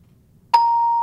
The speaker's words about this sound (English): That's my little buzzer for I get it correct.